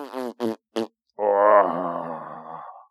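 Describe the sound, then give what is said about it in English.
A voice imitating a fart: three short strained grunts, a brief pause, then one long, drawn-out buzzing groan that slowly fades. Fairly loud, with no other talking. “I have to fart right now.”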